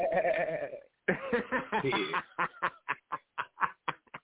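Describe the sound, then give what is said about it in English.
A loud goat-like bleat with a wavering, quavering tone, then a quick run of short, evenly spaced bleating pulses that trail off. “Oh, shit, goat throat.”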